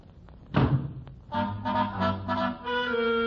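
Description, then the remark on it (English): A door is banged shut with one heavy slam as a man leaves, its thud ringing briefly before sustained musical tones swell in afterward. “With that, he bangs the door and leaves.”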